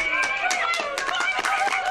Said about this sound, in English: They're clapping. They're actually clapping.